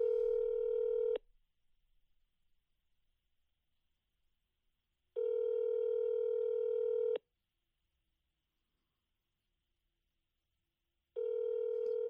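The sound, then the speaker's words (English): A telephone rings on the line: steady, buzzy ringback tones of about a second or two each, separated by several seconds of silence, repeating three times with no voices. “Hopefully she picks up.”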